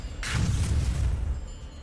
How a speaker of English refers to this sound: You see this light just enter the throne and explodes, and all the particles, all the pieces just fly everywhere. Crystals everywhere, you name it, Chardolin or whatever. There is a large explosion